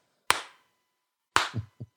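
Two sharp, loud hand claps spaced about a second apart, a deliberate slow clap, with a couple of brief low murmurs following the second clap.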